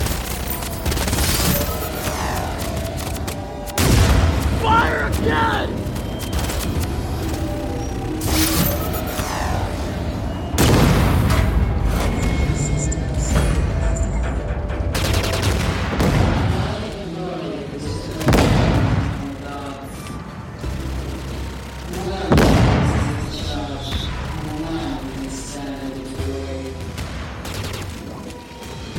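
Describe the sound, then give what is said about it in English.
Chaotic battle noise with bursts of rapid gunfire and heavy booming explosions, loud, punctuated by sharp impacts around 4, 11, 15 and 22 seconds, with shouting voices mixed in. “He ran out in exactly the way he would have wanted. In a hail of gunfire.”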